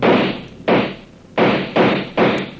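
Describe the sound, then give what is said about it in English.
Five loud rifle shots crack out in the dark in an uneven sequence, each a sharp blast followed by a short echoing decay, with no voices between them. “The minute I open up with the rifle, smack them with the machine gun.”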